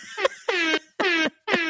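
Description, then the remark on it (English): A voice imitates a hip-hop air horn, blaring four loud, buzzy, nasal blasts in a quick rhythm, the second and third held longest, with short gaps between. “I'm going to give you a hip-hop air horn”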